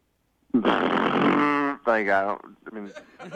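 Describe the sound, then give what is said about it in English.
A person imitates a motorcycle engine: a long, loud buzzing rumble, then a short revving rise and fall, followed by a moment of someone talking. “Can you just kind of give me a little bit of a taste of what you think it sounds like?”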